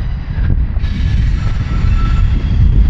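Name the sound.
train passing by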